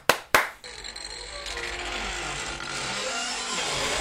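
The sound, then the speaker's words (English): A sound effect: two sharp wooden clicks, then a long, drawn-out creak of a door swinging open over a steady hiss. It is fairly loud, with no voices. “Door cracking open, letting you know, hey, party's going on here, girl, and the invite has got your name on it.”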